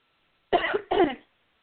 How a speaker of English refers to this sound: got the cough in y'all wait for a second.